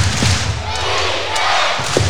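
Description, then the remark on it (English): A loud basketball arena crowd chants a rhythmic two-beat "defense" cheer, with heavy thumps and stomps landing on the beat beneath a dense wash of crowd noise, the score tied 82–82 with 10.7 seconds left. “Crowd chanting. Defense, defense. You can hear them.”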